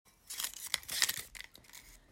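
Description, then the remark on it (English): Crisp paper tearing and crinkling, a series of quick rips and rustles over about two seconds, bright and papery with no voices. “Next paper piece. I don't really know what to call them. Sheet of paper? Paper piece?”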